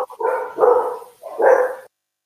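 A dog barks three times in quick succession, each bark drawn out and fairly loud, with no one talking over it.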